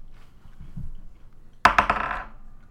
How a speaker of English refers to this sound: So really risky, roll your d20 and add your dex modifier to throw this one.